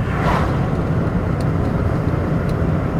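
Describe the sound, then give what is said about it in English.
A steady, loud rush of fuel flowing into a truck at a gas pump, with a low, constant rumble around it and a couple of faint high clicks. No one speaks. “So I'm preparing my vehicle, right? I'm gassing it up.”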